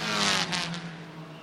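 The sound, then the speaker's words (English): A race car roars past on the front straight, its engine note dropping sharply as the driver lifts off and brakes, with a slight squeal of the brakes, the sound fading quickly afterward with no voices. “Lifts off and then brakes. You even heard the brake squeal a little bit there, Shea.”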